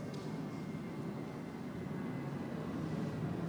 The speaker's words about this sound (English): I know, we got a plane competing with us here.